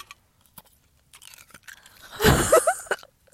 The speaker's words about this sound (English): Sorry for the ASMR. I'm chewing ice because I ran out of water.